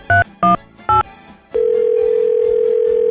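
Three short electronic beeps in quick succession, then a steady, loud telephone dial tone from an elevator emergency phone hums on without a break, clear with no voices, while people are stuck in a broken elevator.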